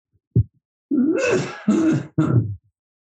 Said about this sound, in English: That's not a COVID cough. My saliva goes into my lungs real easily because my throat is really affected.